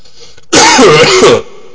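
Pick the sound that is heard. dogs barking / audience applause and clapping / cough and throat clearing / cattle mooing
cough and throat clearing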